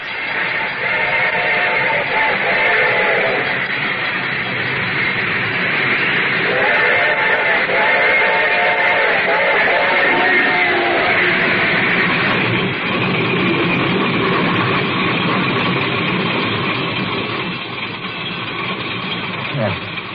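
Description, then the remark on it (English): A train rumbles past with a steady, heavy mechanical roar. Two bursts of tonal, horn-like ringing from its bell rise over it, and the noise eases slightly near the end. “The train was coming closer. I could hear its bell ringing and the crowd's whistle.”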